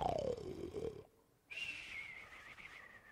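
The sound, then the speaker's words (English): A man imitates a cartoonish snore: a loud, rasping inhale, a brief pause, then a long, thin whistling exhale that slowly trails downward. “That was not too good, but anyway. He was snoring.”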